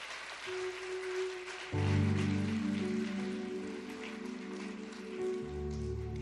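crowd, audience clapping hands

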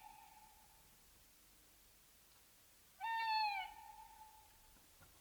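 bird, owl hooting

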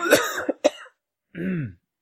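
human body sound, coughing

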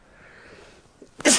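human body sound, sneeze

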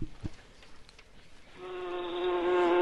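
insect, bumblebee buzzing

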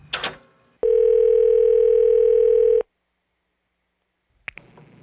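signal or alarm, telephone dial tone

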